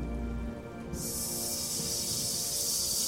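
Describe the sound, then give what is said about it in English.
About a dozen huge garden snakes in a garden hiss loudly and continuously, a harsh sustained hiss that starts about a second in and carries on to the end over a low, steady background rumble. “Coming out from all over this garden are about a dozen giant snakes.”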